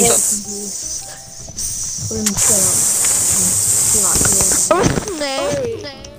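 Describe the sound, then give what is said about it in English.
A voice makes a drawn-out snake-like hiss, a steady airy sibilance running the whole time, mixed with wavering voiced slides and squeaks. “I'm a slither snake.”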